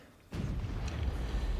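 impact, cannon firing

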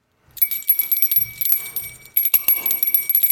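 signal or alarm, bell ringing

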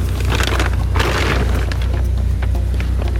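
household object, door slamming

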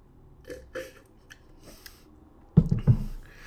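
food or drink, sipping a cocktail

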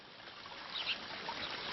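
nature, water trickling

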